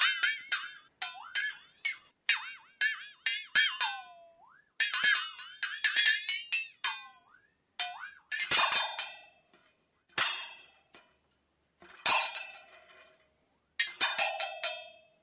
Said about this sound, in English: And it's a metal strip on a little metal frame, and it has these little beater sticks that tap on the metal, and as you torque the metal, bend the metal, these little wooden beaters makes this sound.